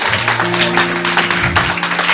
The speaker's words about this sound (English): Let's stand on our feet and give the Lord a clap in the house. Oh, are we clapping?